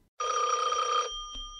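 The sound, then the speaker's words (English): A single loud burst of a telephone bell ringing for about a second, bright, then cutting off and leaving a faint lingering hum. No voices. “If you are alone, don't answer the phone.”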